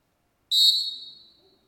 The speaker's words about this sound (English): It's not actually the reason I did that with the Fox 40 whistle, believe it or not.